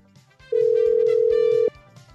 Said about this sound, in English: Let's go, baby. Come on now. Yeah, my man answered on the first ring.